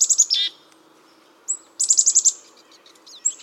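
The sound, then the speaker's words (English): Several hungry pine siskins chatter at a thistle feeder in quick bursts of high, buzzy twitters and rising wheezy notes, with short pauses between flurries and no voices. “It's the chatter of hungry pine siskins at a thistle feeder.”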